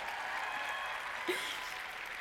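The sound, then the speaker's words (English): A crowd at the Arbonne Power Live event in Las Vegas applauding themselves steadily, a dense wash of many hands clapping at once that holds an even, moderate level throughout with no voices on top. “So, yeah, go on, give yourself a round of applause.”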